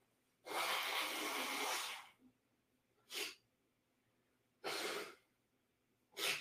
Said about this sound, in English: Hold on, fam. Blow my nose right quick.